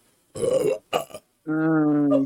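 A loud burp in a few parts: two rough, gurgling bursts followed by a longer, steady, tonal belch that drones for about a second.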